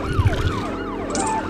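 A police car siren in a driving video game, from a cop chasing the player, yelps in rapid, repeating rising-and-falling sweeps, loud, over a steady low engine rumble with a couple of brief thumps at the start.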